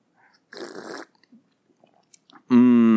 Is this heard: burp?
no